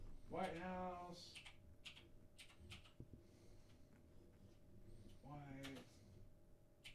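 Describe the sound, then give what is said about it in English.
Scattered, irregular clicks of typing on a computer keyboard as someone types White House with two fingers to find the White House YouTube channel, with muffled voices rising briefly at the start and near the end over a steady hum. “He's still typing it.”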